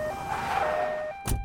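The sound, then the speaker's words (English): An ambulance siren sounds in steady, shifting tones over a rumbling background, then a short, sharp thud near the end. No one speaks. “Bear hopped into the back of an ambulance with Doodle Bear, and they rushed off to the hospital.”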